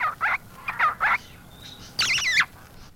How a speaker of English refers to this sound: The Shama thrush hails from India. Shami is a soft, brown, and black feathered bird.